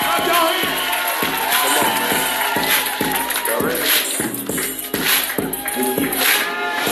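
A lively crowd at an award show cheers and claps continuously, the noisy roar layered over a steady, thumping low beat that pulses about twice a second, loud throughout.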